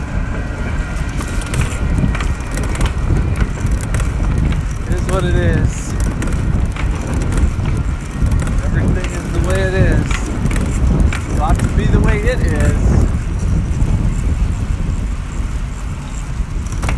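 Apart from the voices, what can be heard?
long train passing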